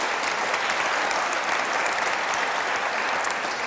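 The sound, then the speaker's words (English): A crowd applauds steadily for people who have just finished a conversation on stage, a dense, even wash of many hands clapping at a constant loud level with no one speaking over it. “Let's give them a round of applause and have our next people on.”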